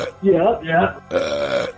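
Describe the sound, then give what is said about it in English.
A voice imitates the burp of the character Belch in three drawn-out, croaky bursts, the last one longer and rougher, loud with brief pauses between them. “And every time he burps, he lifts his eyebrows and goes like...”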